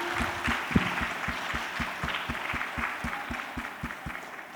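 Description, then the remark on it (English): An audience of parents applauds grade 5 and 6 students steadily for several seconds, a dense wash of many hands clapping with a faint regular thump running underneath. No one speaks. “Okay, parents, I'm sure you'd like to give them a huge round of applause.”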